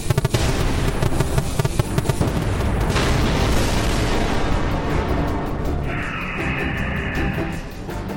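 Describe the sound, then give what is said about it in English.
A huge spaceship explodes on impact just after its escape pods are launched, roaring loudly, crackling and rumbling continuously for several seconds, with a thin whining tone rising through the fading blast near the end. “There was an explosion, and his ship was gone.”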